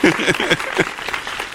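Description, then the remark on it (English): A short burst of hand clapping, quick and slightly uneven, with sharp repeated slaps lasting about a second and a half. It sounds like only a few people, and a voice briefly mixes in. “Clap. Whatever.”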